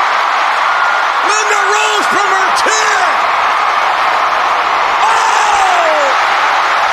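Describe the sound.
A huge wrestling arena crowd roars steadily throughout, dense and loud, reacting to Linda McMahon rising from her wheelchair and kicking Vince McMahon, with individual voices whooping and yelling above the din and a slight swell toward the end.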